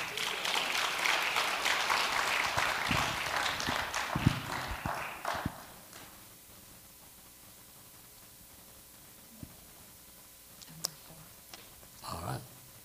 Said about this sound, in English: Give the Lord a clap offering with thankfulness.